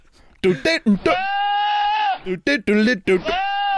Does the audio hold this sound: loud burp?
no